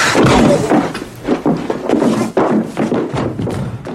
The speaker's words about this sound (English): He punches him in the stomach and he kind of throws him out the swinging doors.